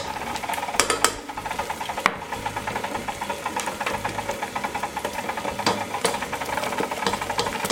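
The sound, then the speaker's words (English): A KitchenAid stand mixer whirs steadily as it mixes warm water with dissolved salt into dough, with a constant motor drone and a rhythmic knocking churn, and a few sharp clicks and thumps punctuating it. No one speaks. “Then we take that warm water and drop it in and mix this in.”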